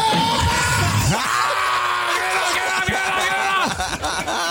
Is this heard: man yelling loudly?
yes